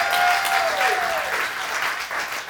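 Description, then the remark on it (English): An audience applauds an on-stage assistant with dense, steady clapping that holds for a couple of seconds, while a thin whistling tone slides downward near the start and fades out. “Round of applause for my lovely assistant.”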